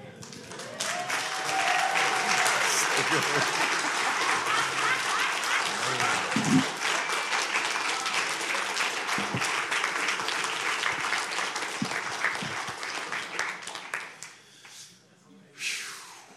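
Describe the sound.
An audience bursts into sustained applause, dense steady clapping with scattered voices and cheers mixed in, holding strong for about fourteen seconds before thinning out and fading.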